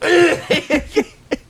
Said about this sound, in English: something got in my throat. Oh, were you like coughed terribly?